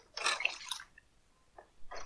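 Water is poured in a bright, splashy gush lasting under a second, followed by a couple of shorter liquid trickles. No one speaks.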